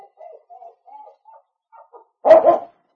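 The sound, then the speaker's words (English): A dog named Shep at the door whines softly in a string of short, high whimpers, then lets out one loud, sharp bark. No one speaks. “He was putting some gold into the box that evening when Shep scratched on the door.”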